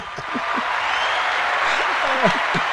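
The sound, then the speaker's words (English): An applause sound effect: a steady burst of dense crackling clapping at an even loudness throughout, with a few faint voices whooping and calling underneath. “Cheer that again, because that's amazing.”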